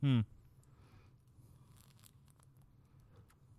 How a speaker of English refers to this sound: There, I gulped in the mic just for you.